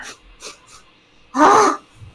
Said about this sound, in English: I'm gonna sniff the candy.